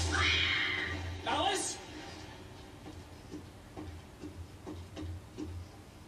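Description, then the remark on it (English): A rising whoosh sweeps past, then a clock running backwards ticks steadily, roughly one soft tick every half second, over a low hum. “And now, Alan's writing, and the clock went backwards.”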